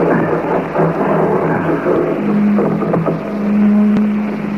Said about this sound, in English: Come on, what's that? Sounds like a motor of some kind. It's Dr. Madeira's, probably.